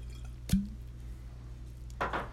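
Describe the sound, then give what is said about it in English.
A short, sharp clink like a glass being handled, followed a moment later by a brief wet slurp of someone sipping a drink, over a low steady hum. “I'm gonna need another sip here.”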